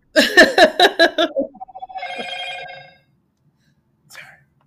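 A mobile phone rings loudly with an incoming call from a Jamaican dad, a quick run of repeated electronic tones sliding into a longer held chime, then cutting off to near silence.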